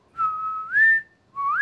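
A person whistles a brief tune alone: a long held note sliding upward, a short pause, then another rising note, clear and steady.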